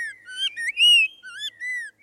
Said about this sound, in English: A sweeter voice belongs to the spot-breasted oriole. Found in suburban neighborhoods around southeast Florida, spot-breasted orioles were first brought to Florida in the 1940s from Central America.